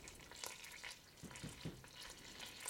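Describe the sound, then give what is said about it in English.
Milk sizzling as it is added to melted butter: a soft, continuous hiss with scattered crackles and a few low bubbling pops, gentle rather than spitting, with no one talking. “So it's, you know, it's not spitting, but it's definitely speaking.”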